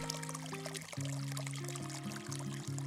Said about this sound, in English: This path is eventually going to cross a very small bridge over a very small stream. This is Little Beck, finding its way into the Aire.